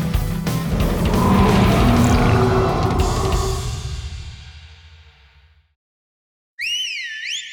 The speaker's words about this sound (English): A familiar whistle came from the forest. It was the T-Rex, Rexy.